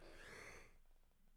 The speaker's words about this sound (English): As he's yawning.